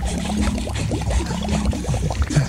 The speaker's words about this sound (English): Floor by floor, the building filled up with water.